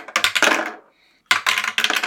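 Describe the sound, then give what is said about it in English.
Dice clatter and tumble across a hard table in two busy bursts of rapid clicks separated by a short pause, with no talking, as players roll for initiative. “So, let's grab dice for one more round of initiative.”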